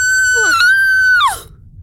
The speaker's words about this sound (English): We're screaming on my front lawn. Yes, I heard.